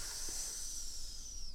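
A snake's hiss, steady and unbroken for the full second and a half, sharp and airy with no pauses and no voices.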